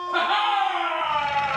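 A dog lets out one long, sustained howl, fairly loud, holding a steady wavering pitch for over a second with no pauses.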